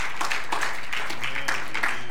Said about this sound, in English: Will you stand up to your feet this morning and give God a hand clap of praise, because he's the provider. Hallelujah. Hallelujah.